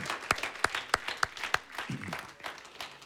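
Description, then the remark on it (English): An audience claps together as a clap offering to the Lord, with loud, sharp claps striking a steady beat over a dense wash of many hands. The clapping thins slightly toward the end. No one speaks. “Now give the Lord another big clap offering.”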